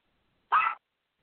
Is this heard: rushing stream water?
no